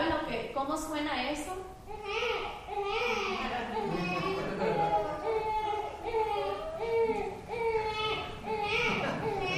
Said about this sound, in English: And he gives this picture of a baby, an infant, longing to be fed. Do you guys know what that sounds like?